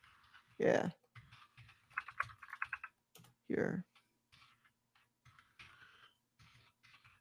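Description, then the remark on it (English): Rapid typing on a computer keyboard: bursts of light, quick clicks, then scattered quieter taps, with two louder thumps standing out. Faint voices murmur in the background. “Not listen to the typing in the back.”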